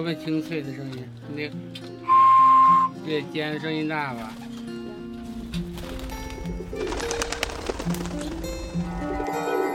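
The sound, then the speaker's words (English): A flock of pigeons with whistles tied to their tails circles in the sky above the hutongs of Beijing, producing a sustained, layered whistling drone with shifting tones and a brief piercing high note, fairly loud and continuous throughout. “It's also quite common for pigeons to appear in the sky above the hutongs, producing a constant, pleasant whistling.”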